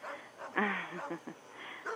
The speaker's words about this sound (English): Oh, goddamn dog.